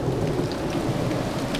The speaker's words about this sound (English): The lightning struck again and illuminated the front of the old mansion. It began to rain.